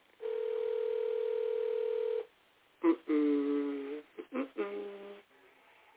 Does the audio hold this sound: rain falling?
no